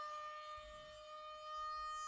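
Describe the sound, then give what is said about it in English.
A hurricane alarm siren holds a steady, unwavering wail with a bright, harmonic-rich tone, sounding continuously for about two seconds over a faint low rumble, with no voices. “Cue the hurricane alarm.”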